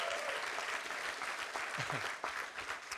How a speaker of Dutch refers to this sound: Geef die mannen een groot applaus.